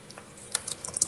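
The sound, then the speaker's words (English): Quick, light clicks of typing on a computer keyboard, about half a dozen keystrokes in an uneven rhythm, fairly quiet, with no voices. “I see you typing.”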